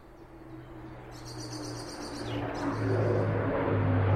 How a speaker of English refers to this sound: but I was up recording wood warblers in my local woodland, and have a listen to this.